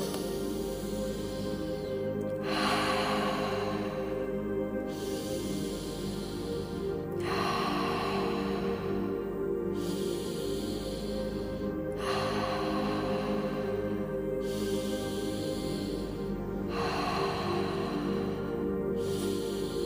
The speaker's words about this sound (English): Let's begin. In through the nose and out through the mouth. No pause in between. Bringing in our conscious, connected breath to become consciously connected to ourselves. Breathing in.